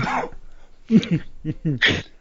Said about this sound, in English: Sorry, coughing. Honestly, coughing.